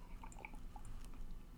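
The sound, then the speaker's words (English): A quiet sip of hot coffee, the speaker's second cup that morning: soft wet slurping and small mouth clicks over a low background hum, with no talking. “I am going to take a sip of coffee.”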